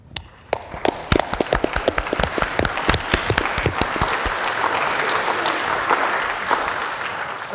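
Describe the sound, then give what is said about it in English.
Audience applause starts with a few loud, separate claps, then swells into a steady, dense wash of clapping from many hands that keeps going to the end. “I'm moved to applaud because you so powerfully and in such an inspiring way articulate the reason that we must learn about these freedoms so that we're inspired to defend them and so they live in our hearts and minds.”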